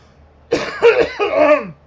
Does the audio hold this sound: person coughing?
yes